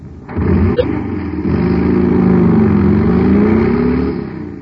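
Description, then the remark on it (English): A jet cycle's powerful engine, supercharged with super fuel, roars steadily for several seconds, its rumbling tone climbing and wavering like a revving cycle, loud and continuous with no voices over it. “Man, that cycle's roaring like a rocket now because it's supercharged with super fuel.”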